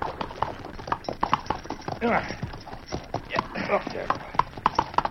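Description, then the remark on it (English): Horses ridden along in a creek plod with a steady, uneven clip-clop of hooves, sharp knocks repeating throughout, while voices briefly murmur over the hoofbeats. “They rode along in the creek for some distance until they came to a place where the banks were rocky enough”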